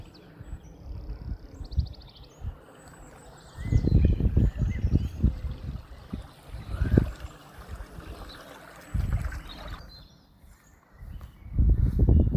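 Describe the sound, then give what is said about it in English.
Irregular thudding footsteps cross stepping stones over a stream on the Cleveland Way, with bursts of louder splashy scuffs spaced a few seconds apart, the stream trickling steadily throughout and faint birdsong high above; the stream later joins the River Rye near Rievaulx Abbey. “I'm just crossing the stepping stones now over the stream.”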